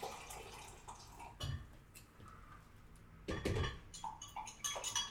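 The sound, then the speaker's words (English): Hot water splashes and trickles into a dye pot in a few short pours, moderately loud, with light drips and the occasional clink of the container between bursts. “Okay, so I've got my hot water in and my fixer.”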